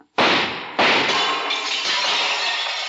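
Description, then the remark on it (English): Two sharp, loud gunshots about half a second apart in a hall of mirrors, each followed by a bright, sustained crash of shattering glass that keeps ringing and tinkling to the end. No one speaks. “He's shooting.”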